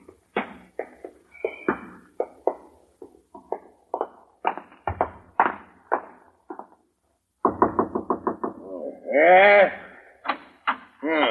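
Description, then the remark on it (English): Knocking on a front door, a long series of sharp, fairly loud raps in uneven bursts. After a short pause comes a quicker run of knocks, with a brief wavering cry near the end. “Did I hear someone at the front door?”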